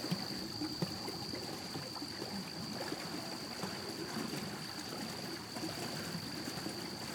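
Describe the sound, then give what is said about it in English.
River water laps and gurgles steadily around a boat heading out into a river, leaving a small city behind, continuous, with a faint high-pitched whine running underneath. No one speaks. “You continue out into the river, leaving the lights of the small city behind you.”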